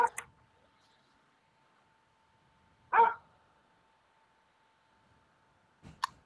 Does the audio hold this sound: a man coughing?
no